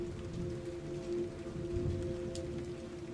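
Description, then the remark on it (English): Heavy torrential rain pours steadily in a dense, unbroken hiss, drumming against a heavy metal door with a small window, with a faint low hum running underneath and no voices. “The heavy metal door's little window only showed flowing water as torrential rain slammed against it.”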